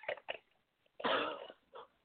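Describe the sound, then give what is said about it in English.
Two quick coughs, then a long, harsh, raspy hack as someone clears phlegm from their throat, followed by one last short cough, with no talking. “It is much more polite to say than, yeah, folks, I just had to cough up a huge ball of phlegm and it was green.”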